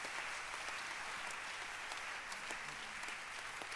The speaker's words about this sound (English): Clap your hands for this wonderful gift of God. Keep clapping your hands.